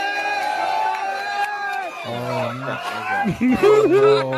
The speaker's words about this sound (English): Yeah, see. Everyone's cheering.